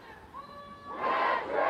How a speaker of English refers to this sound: We're down here at Rosa Park Circle. I'm gonna let you listen for just a second to this protest.